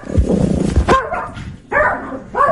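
A dog barks and yelps loudly, a rough growly burst followed by two sharper, higher barks with a brief pause between them.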